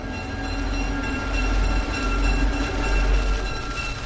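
A train rumbles past on the rails with a steady, loud low-frequency roar and continuous clatter, sustained for a few seconds without any voices.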